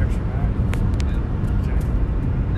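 Steady low rumble of a car's interior while driving, a dense, continuous road and engine drone filling the whole stretch, with a few faint clicks on top.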